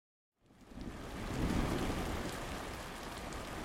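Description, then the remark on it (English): Heavy rain starts abruptly after a brief silence and pours steadily in a dense, hissing wash, with a low rumble of thunder swelling underneath, drenching the south coast of England in December 1853. No voices. “Rain fell and fell, drenching the south coast.”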